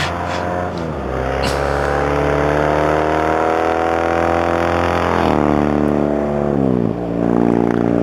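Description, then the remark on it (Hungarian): A 1976 Norton Commando motorcycle engine runs loud with a steady throbbing drone, its pitch sagging and rising twice as the throttle is blipped near the end. No voices. “Motor. Ez egy 1976-os Norton Commando.”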